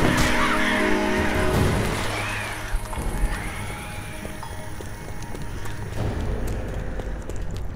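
A crow caws harshly in the first few seconds over a steady wash of sloshing water and rumbling background noise that carries on after the calls fade.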